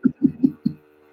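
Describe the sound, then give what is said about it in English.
A massager's low vibrating buzz pulses four times in quick, even succession over a faint steady hum, fairly loud, then fades to a quiet drone. “This is making a dodgy buzzing noise.”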